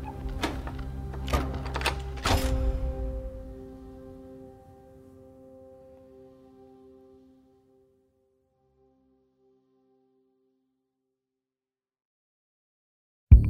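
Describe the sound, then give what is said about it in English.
Several sharp metallic clicks of a door lock snap in quick succession, then a low resonant ring lingers and slowly fades into silence. No one speaks. “And I kept hearing the clicking of the door lock, and they wouldn't...”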